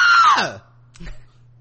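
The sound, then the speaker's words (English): A man's voice mimics a woman's shrill scream, a single high wail that slides downward and cuts off after about half a second, followed by a short low murmur over faint hum. “So you're like, runs out screaming.”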